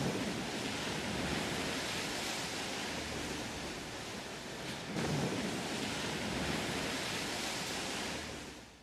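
Loud, steady roar of heavy sea waves surging continuously during a 1,000-square-mile Arctic storm, a dense wash of crashing water and wind-like rush with a brief swell midway and no voices.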